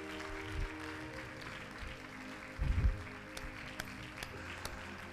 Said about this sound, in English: Clap your hands.